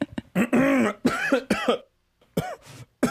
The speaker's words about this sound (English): Seeing you cough just made me cough. Yeah, stop coughing.